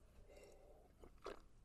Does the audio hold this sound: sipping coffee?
yes